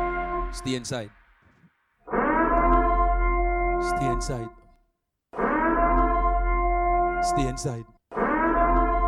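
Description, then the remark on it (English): An alarm siren blares in long, loud blasts of a steady, harmonically rich tone, each lasting a few seconds and separated by brief silences, repeating in a regular pattern. “Sound the alarm, make them stay inside.”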